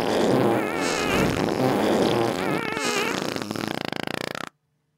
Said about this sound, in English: Yeah, you had the fucking fart. Two rows of farts.